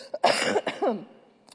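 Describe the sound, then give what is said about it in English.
A man coughs a few times in quick succession, harsh, followed by a brief throaty rasp as it trails off, while preaching. “Maybe it's just cough medicine. I'm going to take it every time I preach. I don't know. Excuse me.”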